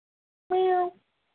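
A single short meow, apparently a human voice imitating a cat, clear with a steady pitch. It lasts about half a second before dropping off into silence.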